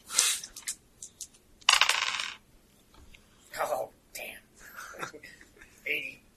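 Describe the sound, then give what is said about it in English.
Dice clatter and tumble across a hard table in a couple of quick bursts, rolled for a sneak roll, with soft, hushed voices murmuring between the rattles. “Okay, make a sneak roll then. Where'd all your dice go?”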